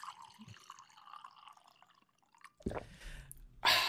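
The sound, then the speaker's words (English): Cold water trickles from a water cooler into a cup, a soft steady stream that breaks into louder gurgling splashes toward the end, with no one talking. “sit around the water cooler with me and Marcus and enjoy this cold cup of water”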